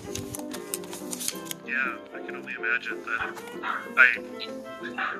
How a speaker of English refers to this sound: You can hear the dogs. I can totally hear the dogs. Oh, they're just going crazy right now. They're our friends. They let us know when the bears are there.